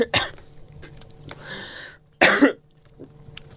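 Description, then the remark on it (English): Two sharp coughs from a person who is worked up, one near the start and a louder, rougher one about two seconds later, with a softer throaty rasp between them and a small catch of breath at the end. “I'm fucking coughing because I'm worked up.”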